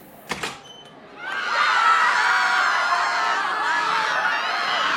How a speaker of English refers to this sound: Okay, closing the door. That is children screaming in terror.